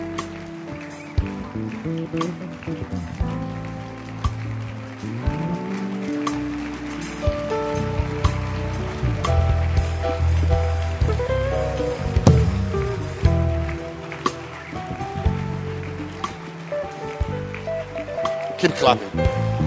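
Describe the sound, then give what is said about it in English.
A church audience claps their hands for the pastor and his helpers in sustained, dense applause that swells and stays steady for about twenty seconds, with voices audible underneath the crackling claps. “Clap your hands. And all those who help you, God bless you. Keep clapping for them.”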